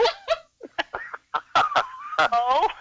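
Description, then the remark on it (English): A duck quacks in a quick, irregular run of nasal, honking calls, loud, with short gaps between bursts and a longer wavering call near the end. “All right, well, didn't that duck give a...”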